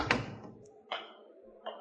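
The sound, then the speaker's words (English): A door at city hall shuts with a solid thud, followed by a couple of lighter clicks and knocks, likely the latch settling, otherwise quiet. “Let me close the door.”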